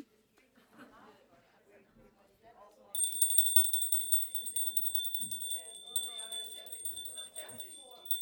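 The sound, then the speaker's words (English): A hand bell rings loudly and continuously for several seconds to end a five-minute group discussion, its rapid metallic clanging cutting over many people chatting in groups. “5 minutes, I will ring the bell.”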